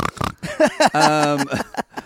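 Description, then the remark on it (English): A person mimics a pig, loudly grunting out a few quick oinks before drawing one into a longer, nasal squeal. “Someone said disgusting pigs, and I kind of went...”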